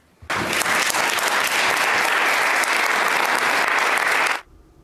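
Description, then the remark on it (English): A sustained round of applause from a large group in the Senate chamber as a gun-control bill, Bill C-21, passes, starting abruptly, holding steady and loud for about four seconds, then cutting off sharply. “Now, there was a round of applause yesterday in the Senate when the bill passed.”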